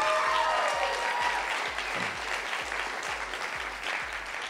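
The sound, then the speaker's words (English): Sustained applause from a crowd, a dense wash of clapping holding steady throughout, with a rhythmic low thumping pulse underneath at regular intervals. “Why don't you clap right there, like we're gonna go.”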